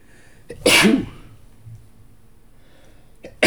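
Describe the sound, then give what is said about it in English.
A single loud sneeze bursts out sharply after a brief intake of breath, followed by quiet background and another faint breathy sound at the end. “I got a sneeze here.”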